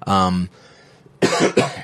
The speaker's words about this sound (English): I'm sorry. I'm getting really phlegmy. I apologize. I might have to go through and cut out some of those coughs.